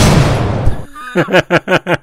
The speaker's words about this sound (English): that's a funny sound. That's a funny gunshot.